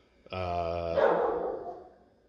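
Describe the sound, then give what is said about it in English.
A dog named Maverick lets out a single drawn-out bark, starting as a clear tonal yelp and breaking into a rougher, noisy tail before fading, with no voices. “sorry, Maverick's barking.”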